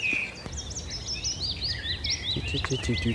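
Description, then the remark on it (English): A willow warbler sings a series of sweet, descending whistled phrases over a soft outdoor background with a low rumble and blackbird song, on a peaceful marshland bike path along an old railway line near Glastonbury. “That's the willow warbler, and that lovely in the background, everywhere, that sultry sound of song of blackbirds.”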